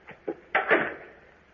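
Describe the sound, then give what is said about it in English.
An outer door opens: two quick latch clicks, then a louder rattling swing and thump that fades out over the next second. No one speaks. “Then here goes the outer door.”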